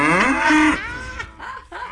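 A cow moos loudly, one long drawn-out low call that rises and then trails off into a rougher, wavering bellow before fading.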